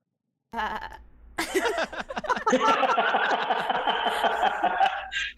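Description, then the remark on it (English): A person imitates a sheep with a long, wavering bleat, loud, its voice shaking in quick rapid pulses for several seconds after a brief opening sound. “Kasi pagka may anytime yung pag-uusapan, sheep or anything na may ganong image, ba, gaganon ako.”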